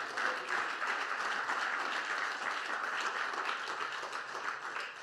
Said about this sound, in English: Come on, let's give God a round of applause.